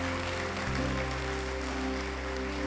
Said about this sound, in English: Can we just give a round of applause for those that raised their hand this morning?